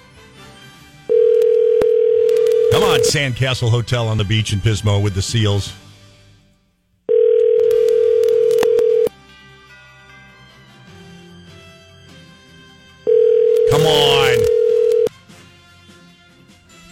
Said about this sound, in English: Don't answer the phone. It's … calling.